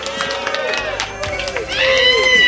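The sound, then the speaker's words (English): A crowd at the end of a live .NET Rocks show cheers and whoops with overlapping high-pitched shouts over scattered clapping, giving one more round of applause, growing louder and fuller toward the end. “All right, guys, one more round of applause for .NET Rock.”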